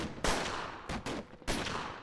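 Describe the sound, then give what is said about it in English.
A barrage of gunfire from masked gunmen firing into cars stopped at an intersection: loud, sharp bursts of shots erupt one after another in quick, irregular succession, with echoing roar filling the gaps between volleys. No voices are heard. “That's when Linda heard a barrage of gunfire.”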